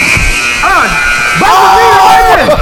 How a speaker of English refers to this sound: He got the buzzer!